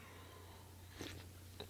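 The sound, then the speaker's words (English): A couple of quiet sips of someone's coffee, short wet slurping bursts about half a second apart over a faint steady hum, with no one talking. “I couldn't do it without you guys, and I couldn't do it without this coffee. So one more sip.”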